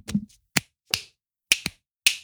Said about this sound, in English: You're really good at snapping. Yep, see? That's a loud snap.